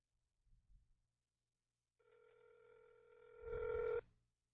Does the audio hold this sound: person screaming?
no